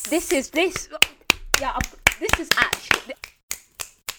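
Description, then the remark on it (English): Sharp finger snaps and hand claps ring out in a quick, uneven series of a dozen or so crisp hits, mixed with voices talking at first, then continuing alone toward the end. “Yes, the clicks and the claps.”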